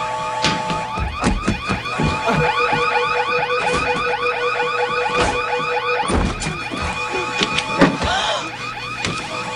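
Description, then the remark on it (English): A loud electronic emergency alarm wails continuously, repeating rapid rising-and-falling tones that cycle over and over for the whole stretch, with a couple of dull knocks partway through and no voices. “Those aren't my alarms that go off when he cuts my oxygen off.”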